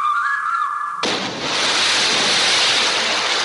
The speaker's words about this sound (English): Hello there, struggling figure in the water. Hey, will you quit splashing?